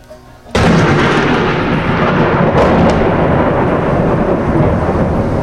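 A sudden, very loud crack of close thunder from lightning striking a grass field right in front of the recordist by the Maas, with no wind, bursts in after a brief quiet moment, then rolls on as a heavy, sustained rumble with no voices.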